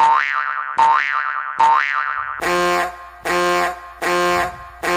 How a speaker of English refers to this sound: That, and then George shows up. 8 boings, time to join. 8 boings, time to join.